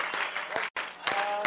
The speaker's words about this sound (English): Let's put our Bibles down and let's just clap our hands one more time. Amen. To the Lord.